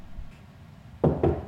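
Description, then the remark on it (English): Two firm, solid knocks on a wall in quick succession, after a second of quiet room tone. “Let me knock on the wall first.”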